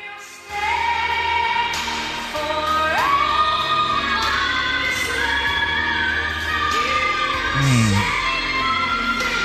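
Two pop songs play over each other at once as an example of what sirens might sound like, a loud, dense clash of music with high, strained sustained vocals sliding and wailing on top, filling the whole stretch without a break.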